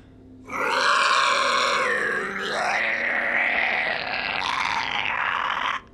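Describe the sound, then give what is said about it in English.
A long, guttural yell from deep in caverns rises abruptly and holds for about five seconds, harsh and gravelly with strained, shifting tones, before cutting off sharply. No one speaks. “And then you hear another yell, Rostos, in your head.”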